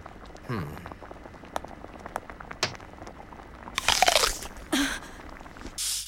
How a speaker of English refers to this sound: And then Sanji grabs an apple, goes, this is a tasty apple. No, dude, that big fucking crunch.